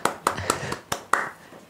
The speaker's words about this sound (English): That was a loud clap. Sorry. That was a loud clap. Sorry about that.